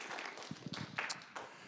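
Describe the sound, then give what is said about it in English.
Soft, brief audience applause: a quiet patter of many hands clapping, with a few sharper individual claps standing out, lasting under two seconds. “Or applause, that's okay too.”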